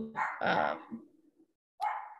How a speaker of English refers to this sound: The dogs are still barking and it's gotten quite tedious at this point.